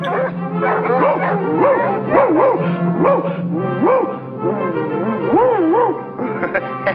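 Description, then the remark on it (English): A pack of hunting dogs barks up a tree in a Bugs Bunny cartoon, several voices overlapping in loud, rising-and-falling howling yelps with no pause. “I do like that we immediately go to a bunch of hunting dogs barking up a tree, and we cut to Bugs disguising as a hunting dog.”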